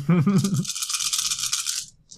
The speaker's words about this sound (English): And I'm actually going to roll the dice the right way.